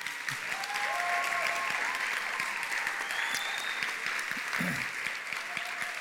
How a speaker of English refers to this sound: If I could have the team, the students and the chaperones of our team, if you guys could stand up and let's applaud them today.